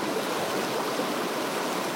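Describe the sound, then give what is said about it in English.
Rushing floodwater pours in a steady, unbroken roar of churning water that stays even in loudness for the full two seconds, with no voices present. “When floodwaters reach your door?”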